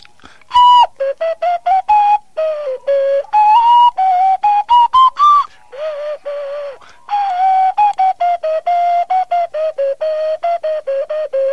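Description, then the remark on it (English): A whistle plays a quick tune of many short, bright notes in a bouncy rhythm, loud, with no talking over it. “In fact, I guess it is a whistle.”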